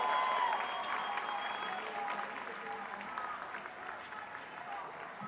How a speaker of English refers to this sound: If you know we'll win, clap it up for winners. We got victory on our side.